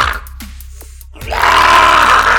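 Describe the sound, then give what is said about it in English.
A creature with four hand-like appendages and very sharp teeth in a massive maw, sitting in the corner of a chamber and howling at passersby, lets out a brief low grunt, then bursts into a loud, harsh, raspy scream that holds steady for about a second to the end. “It sits near a blanket laden with items in the corner of the chamber, grunting and howling at passerby and showing very sharp teeth in its massive maw.”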